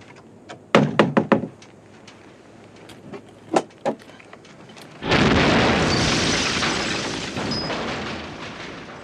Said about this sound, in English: You can have big explosions. How do I know these are going to go bang?